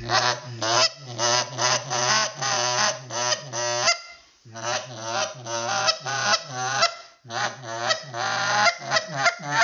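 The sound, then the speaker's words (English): A goose call is blown in a buzz murmur, or murmur cluck: rapid, rolling clucks and murmurs, a buzzy chattering stream with two brief pauses, loud and steady with no talking. “They hit a what I call a little murmur cluck, and it's a buzz murmur, I would call it.”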